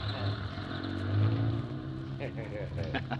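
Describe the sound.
A heavy moving van's engine revs with a deep, steady drone that swells and climbs in pitch as the van, just turned around, pulls away, fairly loud, with muffled voices briefly breaking through near the end.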